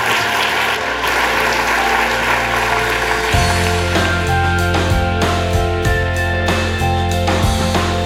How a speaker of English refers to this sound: I want to thank you all for coming, and I want to give a special thanks to our distinguished panelists here. If we give them a round of applause.